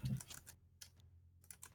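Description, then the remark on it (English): Quiet typing on a computer keyboard, with soft key clicks arriving in short irregular bursts separated by brief pauses, heard alone without any talking. “Meanwhile, whilst you're still typing up everything”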